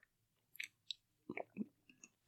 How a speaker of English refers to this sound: Okay, bro. You be gulping and breathing in the mic like it's a fucking... like, ASMR, bro.